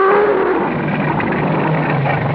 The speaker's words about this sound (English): First, he will growl, challenging us to move against him or to run. He would prefer us to run. Then his growl will become more ferocious.